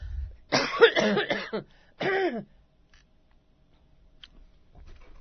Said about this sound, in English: I'm going to have to cough. I have to turn my mic down a little bit.